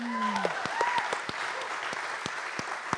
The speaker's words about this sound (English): Can everybody just give Nate and the band a round of applause?